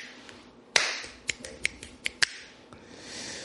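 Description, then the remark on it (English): Half a dozen sharp, crisp claps in an uneven rhythm, the first one loudest, over a soft steady hiss with no talking. “Pop off. Can't wait to say it. Huh? Clap.”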